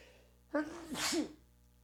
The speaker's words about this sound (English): I'm going to sneeze.